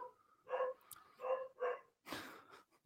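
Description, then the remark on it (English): The speaker's dog barks several times in quick, uneven, loud bursts, followed by a broader rough yelp-like burst; no one speaks. “Oh, my dog's going mad.”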